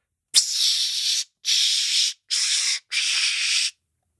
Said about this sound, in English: That was Dark Temptation. I don't know what Dark Temptation is. The Body Spray.